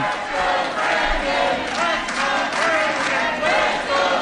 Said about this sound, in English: They're standing and chanting and clapping.